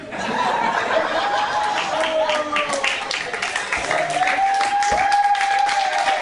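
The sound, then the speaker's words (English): An audience breaks into steady applause, a dense wash of many hands clapping that holds for several seconds, with scattered laughter and voices mixed into the crowd noise. “Oh, applause break. Applause break.”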